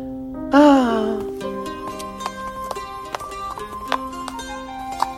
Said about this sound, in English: That was mesmerizing. Oh, you talented one. Would you teach me how to play the lute?